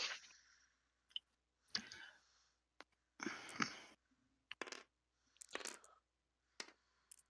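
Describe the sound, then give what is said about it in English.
Dice, rolled in Tabletop Simulator, clatter and tumble across a hard surface in a series of short, sharp bursts of clicking, with brief pauses between rolls. Fairly quiet, with no voices. “And if you are logged into Tabletop Simulator, I want to see your roll. I am. Because I like to see the dice.”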